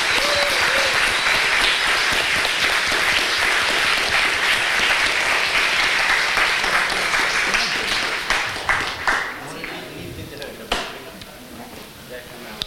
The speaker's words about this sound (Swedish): Och nu är det färdigt. Ja. Pang, boom. En applåd. Grattis!